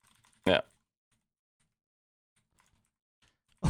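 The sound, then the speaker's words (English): Soft, scattered clicks of typing the question "where is a Chihuahua?" on a computer keyboard, quiet and irregular, bracketed by two short loud bursts of voice at the start and end. “So, Chihuahua's from Mexico, but I started typing, where is a Chihuahua? Just to make sure.”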